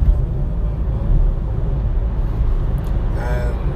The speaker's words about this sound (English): And look at the speed these cars are going. They're speeding to the point where the guy's having to brake. He's racing.